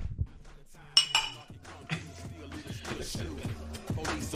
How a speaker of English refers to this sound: Oh, right. Oh shit. We got a clink.